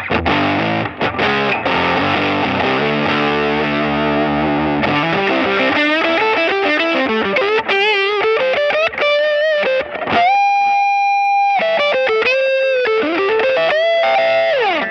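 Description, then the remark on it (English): Loud electric guitar through a Rat distortion pedal, playing thick sustained chords and then held single notes with bends and slides, with no talking. “Well, it's a Rat. Yeah, I love Rats, you know, but...”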